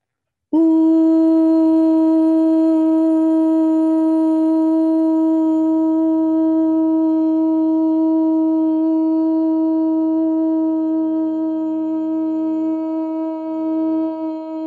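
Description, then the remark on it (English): Voices chant a single long "ooh" together, holding one steady, mid-pitched note loudly and evenly for about fourteen seconds without a break. “Here we chant, ooh.”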